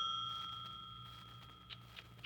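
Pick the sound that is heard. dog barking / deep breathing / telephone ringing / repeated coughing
telephone ringing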